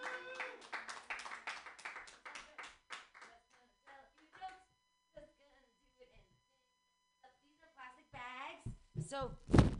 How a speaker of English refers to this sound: All right. We have a bunch of comics that are going to be excited for you. Clap it up for me right now. Yay.